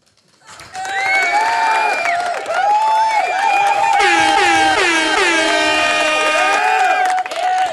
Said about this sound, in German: Danke dafür. Es sind wirklich übrigens echte Applaus